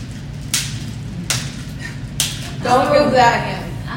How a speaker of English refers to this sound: So you're slapping it with your hand. You want to slap your hand with it. So keep this hand and you know, boom, harder.